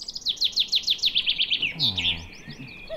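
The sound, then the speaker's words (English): Birds chirping and singing in quick, repeated high-pitched phrases, clear, with a brief low warbling call partway through and no talking. “But like the sound of birds in the morning, particularly in summer now, I don't know if you guys have noticed”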